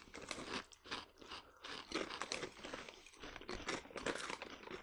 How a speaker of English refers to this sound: Ooh, they're ribbed. Oh. For my pleasure. They are. See? And they don't say anything about that. I like ridged chips so much better than flat chips. Yeah, I like a ridged chip.